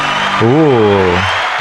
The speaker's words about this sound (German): Applaus. Sali. Ja, ich habe schon einen Applaus verdient.